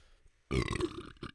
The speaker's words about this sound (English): I just burped in the microphone like I'm just some fucking...